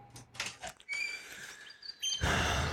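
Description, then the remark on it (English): A butcherbird sings from gum trees fringing a cemetery, a fluty, warbling song of sustained clear whistled notes, before a burst of broad rushing noise takes over at the end. “A butcher bird warbles from the gum trees that fringe a nearby cemetery.”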